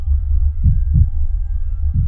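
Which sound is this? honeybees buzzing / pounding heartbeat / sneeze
pounding heartbeat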